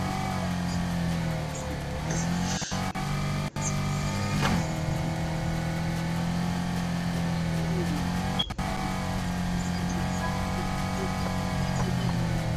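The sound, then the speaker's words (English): A steady, droning car engine from a driving video game hums along at a constant pitch, the car cruising at 55 miles an hour while tailgating another car, with a few brief clicks and no one speaking. “I'm just driving around right now. Just going 55 miles an hour behind a car, tailgating them, because why not?”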